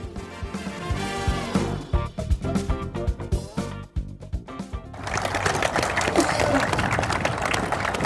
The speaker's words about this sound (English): Well, that, Young Trafford, is the sound of some polite applause at the beginning of this interesting fixture for us and a completely radical new departure for Footy on the Med. It is. It's a very polite, very sophisticated introduction to a game